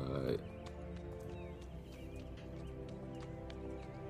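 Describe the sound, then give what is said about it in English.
The hooves of Copper, walking along a path, clop steadily on soft, wet ground, a run of evenly spaced hoofbeats, with sustained tonal music playing underneath throughout. “It's a copper's feet on the wet floor, wet ground.”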